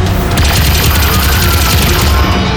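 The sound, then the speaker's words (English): A sci-fi energy cannon, retuned to Reptilia Sapiens, fires in a tunnel in a loud barrage, its rapid blasts running together over a deep, rumbling boom for the whole stretch, with no voices. “I'll retune the Scion Cannon to Reptilia Sapiens.”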